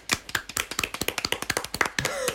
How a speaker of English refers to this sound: Let's give ourselves a round of applause. Go us. Well done.